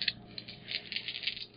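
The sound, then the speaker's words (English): Six dice clatter and tumble across a hard surface, a quick, irregular rattle of small clicks lasting under two seconds, fairly quiet, with no talking. “Wow, that's a lot of dice.”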